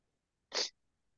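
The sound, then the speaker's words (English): A single sharp, breathy sniff from someone with a little bit of sniffles, a short burst of hissy noise lasting about a quarter second, fairly loud against otherwise near silence with no talking. “apologies, I have a little bit of sniffles.”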